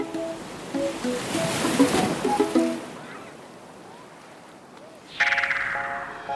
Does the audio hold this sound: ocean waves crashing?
yes